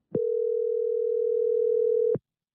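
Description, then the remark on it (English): A single telephone ringback tone while calling the phone number of Father Ed Nadalny shown on billboards in Connecticut: one steady, moderately loud electronic hum lasting about two seconds, bracketed by soft clicks, with no voices. “I wondered what would happen if I called. So I did.”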